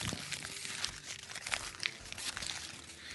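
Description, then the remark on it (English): Paper crinkling and rustling, a steady papery crackle with several sharper crisp bursts as a question slip is picked and unfolded. No one speaks. “Stereo paper fetishists. There we go.”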